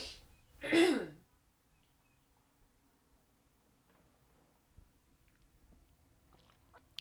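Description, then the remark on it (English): A single loud throat-clearing bursts out near the start, then near-silence follows with faint small clicks and soft swallowing sounds, like quiet sips from a drink. No one speaks. “I'm going to need a drink before I get into this because I feel a cough coming on.”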